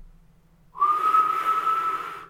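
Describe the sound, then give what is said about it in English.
A kettle whistles as it finishes boiling: the whistle starts abruptly and holds a loud, steady, high-pitched shriek with a slight upward bend at onset, over a faint low hum. “The kettle let off a loud shriek as it finished boiling, saving me from having to explain away my appearance again.”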